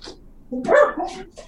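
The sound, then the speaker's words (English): A dog named Karma, a Newfoundland mix, gives a quick pair of fairly loud barks, with a short yip trailing after against a quiet background. “There's your dog.”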